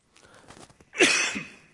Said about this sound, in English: Excuse me for coughing in the microphone.